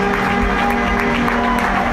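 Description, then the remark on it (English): A stadium crowd cheers after Adelaide Rush score their first goal, with 3 minutes left against the Brisbane Skylanders: a loud, unbroken roar of many voices with a steady droning tone running underneath for the full two seconds. “And the crowd has gone absolutely ecstatic.”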